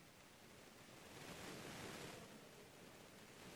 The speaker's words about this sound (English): You've got an ocean.